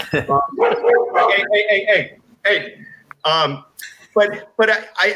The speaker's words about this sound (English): Like, probably the only way to measure it is to get this dog to be quiet.